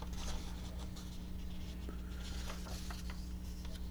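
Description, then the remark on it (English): Soft, continuous papery rustling with scattered crinkles as pages of the New York Times newspaper are turned, quiet, over a steady low electrical hum. No one speaks. “I'm sorry, I'm just turning pages here.”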